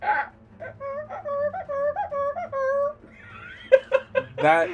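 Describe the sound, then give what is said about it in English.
A person imitates a dog with a rapid series of high, whiny yelping pulses, followed by a few sharper barking bursts and a breathy, laugh-like sound at the end. “Why do you do dog sounds? You know you can't make them.”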